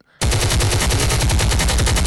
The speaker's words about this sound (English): Hit them gunshots, man.